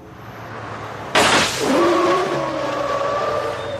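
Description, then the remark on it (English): A sharp, loud burst as a car tire blows out, followed by a sustained high squeal of skidding tires over a steady engine rumble, the screech wavering as it drags on. “Tire blow out, we get a all flat.”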